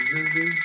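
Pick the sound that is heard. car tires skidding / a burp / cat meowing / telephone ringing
telephone ringing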